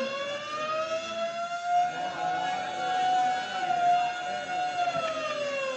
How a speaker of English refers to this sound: And suddenly the quiet routine of the prison is broken by frantic bells and the shrieking wail of the siren.